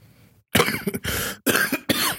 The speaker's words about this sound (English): Man, who coughing? That's me. Coronavirus.